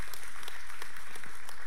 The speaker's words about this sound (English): Can you get with me on that? I mean, give God a hand clap of praise if you believe that.